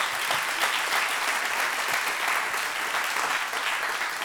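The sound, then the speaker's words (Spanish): A church audience applauds Jesus, a dense, continuous wash of clapping hands that stays loud and even throughout without any voices breaking through. “Da un aplauso a Jesús.”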